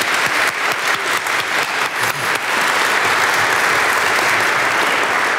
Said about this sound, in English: She just had her 90th birthday. So let's have another round of applause.